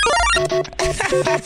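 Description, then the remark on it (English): Several studio phone lines at the Kiss radio station ring at once during a morning call-in, their electronic trilling tones overlapping in quick repeated bursts, fairly loud, with no one speaking. “They're all ringing.”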